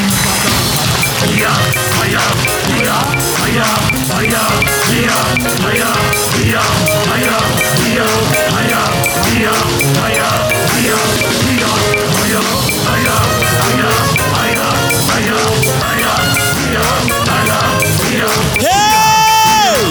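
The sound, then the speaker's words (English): A large crowd claps hands rapidly and continuously while praying, many voices crying out together, loud, a dense, unbroken wall of sound that lasts the whole time. “This is how we are praying. We are doing this prayer. Once you are clapping, snatch it from your hands.”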